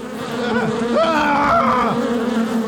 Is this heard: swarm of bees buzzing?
yes